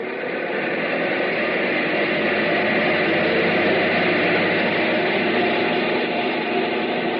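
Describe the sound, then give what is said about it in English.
A loud, sustained roar of a captive aircraft engine, number one engine, brought up to maximum RPM on a test block, steady and dense throughout with no pauses, filling the whole recording. “Bring number one engine up to maximum RPM.”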